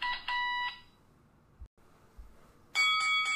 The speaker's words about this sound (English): I had a lot of ringing in my ears, and that was a really loud bell.